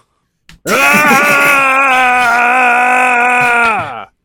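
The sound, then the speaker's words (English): A voice lets out a single loud, strained power-up scream, held at a steady, slightly rising pitch for about three and a half seconds before cutting off, imitating a cartoon charging-up sound effect. “Well, that's my Errata-sode Ball Z sound effect.”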